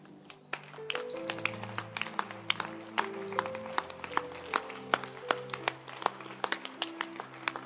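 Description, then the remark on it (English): Thin, scattered handclaps from a church audience, irregular and unenthusiastic, sounding over sustained keyboard-like chords. No one speaks. “You see, you cannot even clap because you don't even understand the message.”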